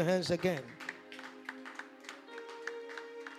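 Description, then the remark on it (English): A group claps along in a steady rhythm, the claps moderately loud and evenly spaced, with a voice at the start and a sustained keyboard-like tone underneath. “Clap your hands again.”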